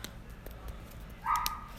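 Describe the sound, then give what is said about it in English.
Two dogs, Cash, a blue heeler puppy, and Rusty, an old wiener dog, barking in the background, a quick run of short, sharp barks, fairly faint, with one louder, higher-pitched bark standing out near the end. “So, yeah, so, sorry for the background, sorry. You hear two dogs barking, that's, Cash and Rusty.”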